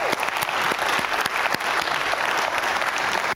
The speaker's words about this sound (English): Won't you give him a round of applause?